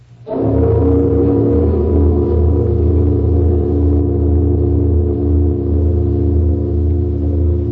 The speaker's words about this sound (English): The bell's lips inscribed with Buddhist texts from the sacred Fa Hua King, from the chapters of the holy Lin Yen King. Hear the great bell responding. How mighty her voice, though tongueless.